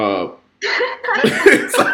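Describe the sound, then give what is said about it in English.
A short burp with a low, buzzy tone, then after a brief pause a run of rough, raspy throat noises that sound like more belching or throat clearing. “So sound like I was about to cry, but I got the burp.”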